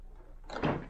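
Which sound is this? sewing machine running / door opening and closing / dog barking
door opening and closing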